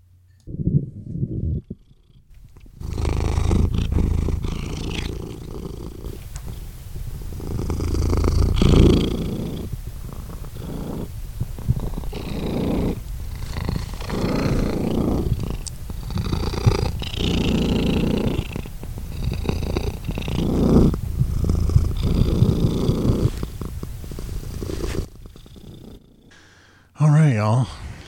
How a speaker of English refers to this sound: That was the sound of Rupert Giles, who is one of our cats